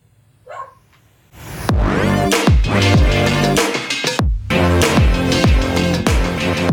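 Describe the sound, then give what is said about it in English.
A male dog barks loudly and rapidly, a steady run of sharp yaps following a faint noise near the start, with no talking. “And that's her dog, by the way. He's also ready.”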